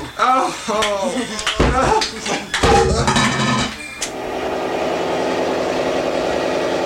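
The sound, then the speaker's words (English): A few seconds of excited vocal sounds and sharp knocks, then a small scooter engine settles into a steady, even running drone that continues at moderate loudness to the end. “I can't pass, the engine's on fire.”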